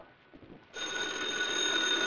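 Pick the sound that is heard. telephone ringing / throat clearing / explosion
telephone ringing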